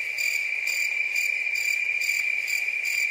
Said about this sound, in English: I think crickets are needed here. Yeah, we need crickets.